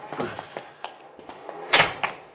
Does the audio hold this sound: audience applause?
no